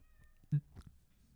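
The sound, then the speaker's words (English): Cats outside meow twice in quick succession, the first call sharper and louder, the second softer, against a quiet background. “Pussies are outside. Cats.”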